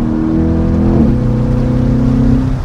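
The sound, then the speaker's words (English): A big classic American Chevrolet V8 engine in a mid-engine Corvette rumbles loudly, its deep harmonic drone shifting pitch once as it revs, steady and continuous with no talking. “First off, this still has a classic American Chevrolet V8 in it, which doesn't sound like any of the engines you normally find in an exotic-looking mid-engine like this.”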